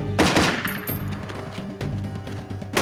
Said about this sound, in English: Battlers, this is Dog Bite. We're still in a heavy firefight.